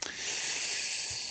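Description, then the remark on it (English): A slow, steady hiss of breath drawn in through the teeth, lasting over a second with an airy, high-pitched texture and a slight catch at the start and end. “All the heavy breathing, I'm guessing it's a no. It's that slow intake through the teeth.”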